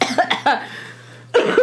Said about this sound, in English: Okay. I'm so sorry. I've been, like, coughing crazy.